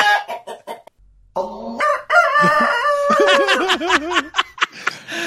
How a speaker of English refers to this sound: Chickens.